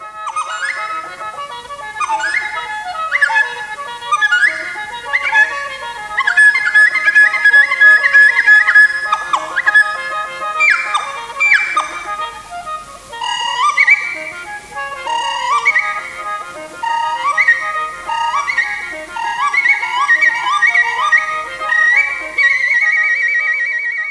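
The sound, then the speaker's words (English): A dizi, a Chinese wind instrument that is a kind of flute, plays rapid, high chirps, trills and quick sliding notes that imitate birds twittering, then settles into longer sustained tones. Steady and fairly loud throughout, with no voices. “In this episode, we'll be talking about a distinctive wind instrument called the Dizi, which is a kind of flute, and we'll show you its ability to imitate the sounds in nature, such as the twittering of birds.”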